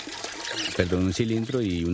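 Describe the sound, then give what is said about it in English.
Well water gushes and splashes from a double-action hand pump with a yellow handle on a covered well outside a factory, steady for a moment, then a voice begins talking over the continuing flow. The pump keeps the piston stationary and lifts a pipe made of plastic tubing. “This double-action pump taps water 6 times deeper than normal models.”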